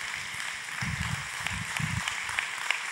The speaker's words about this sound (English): All right, now, pause. If y'all gonna pause, don't give me no pity party applause, all right? I'm gonna need me a good black church applause.